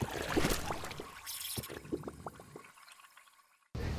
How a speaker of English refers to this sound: Yeah, that's the coffee grinding right now, and I'll be back with you in just a second.